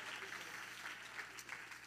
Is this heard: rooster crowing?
no